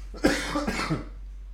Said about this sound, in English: I do not cough throughout the day until I come on here. I don't know what happens.